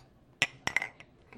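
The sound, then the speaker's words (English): Glasses of oaked pilsner beer clink together in a toast, a few sharp, bright taps in quick succession, each leaving a short ringing tone. Fairly clear, with no talking over them. “Cheers.”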